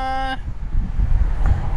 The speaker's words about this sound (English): Oh, cars. Go away.